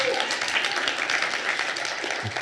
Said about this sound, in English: You're allowed to clap.